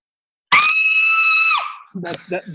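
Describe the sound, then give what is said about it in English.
A man imitates a girl's high-pitched scream, one loud sustained shriek about a second long that trails off, followed by a short burst of talking. “wanted to know if you could do the girl scream.”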